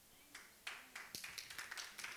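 A church audience at a sermon breaks into applause dedicated to God, a few scattered claps at first quickly swelling into steady clapping from many hands.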